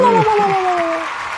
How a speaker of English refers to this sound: I guess you get the claps.